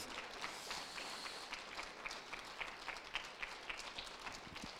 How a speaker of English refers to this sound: Can we clap for Jesus? Come on, bring Him praise.